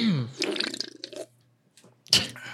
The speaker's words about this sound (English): Sounded like a wet fart. That sounded like a really wet fart. Did it? Okay, yeah. That was a sip of hard seltzer, but that's fine. That sounded like the wettest fart.